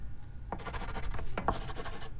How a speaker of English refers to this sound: She scribbled on a piece of paper and handed it to Daniel.